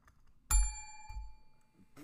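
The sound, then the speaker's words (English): A hand bell is struck two or three times, each hit giving a bright metallic ring that lingers and slowly fades before the next strike. Fairly loud, with no talking. “I'm going to keep hitting this bell until you talk.”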